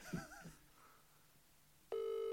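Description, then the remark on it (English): A few quick telephone dialing beeps as a man is being called, followed after a short pause by a loud, steady ringing tone that starts near the end, with no voices. “I'm going to get him on the phone now.”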